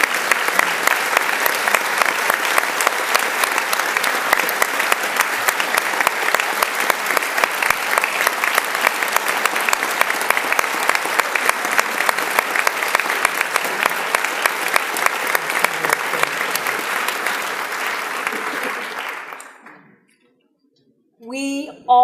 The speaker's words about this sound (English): Have these students stand and let's give them a round of applause.